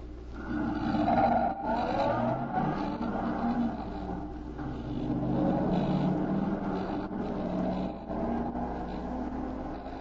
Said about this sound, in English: The other car is pulling away. Follow it.